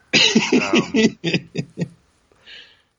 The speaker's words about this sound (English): I don't pay you to cough.